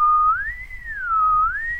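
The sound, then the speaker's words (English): A clear whistled tone glides up, holds, dips back down, then rises again in a smooth wavering pitch, with a low rumbling hum underneath and no talking. A person whistles to demonstrate how the tongue arches up in the mouth as the pitch goes high. “And what that means is, as you go high, your tongue like arches up in your mouth, very much like as if you were whistling.”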